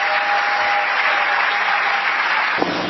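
Sustained applause from an audience for a speaker who has just finished, a dense steady wash of clapping that holds at an even loud level throughout, with a brief sharp knock near the end.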